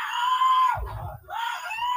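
A woman screams loudly and close by in long, high-pitched, anguished cries, broken briefly midway by a low rumbling thud before the screaming resumes.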